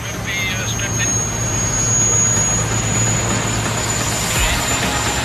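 A Rocket Helicopter Emergency Medical Services helicopter, Medic 1, lifts off from Rand Airport in Johannesburg on a hot summer day, its engine and rotors roaring steadily with a high turbine whine above a deep, throbbing drone that holds loud and constant throughout.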